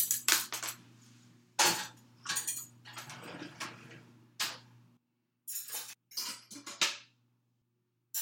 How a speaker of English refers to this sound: So I'm going to start putting some clean silverware away.